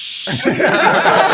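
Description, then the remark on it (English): A short, breathy hiss made by a voice mimics a can of soda being cracked open, then gives way immediately to rhythmic chuckling laughter. “I'll sneeze at the exact second that I open this can of soda, and it will completely cover it up.”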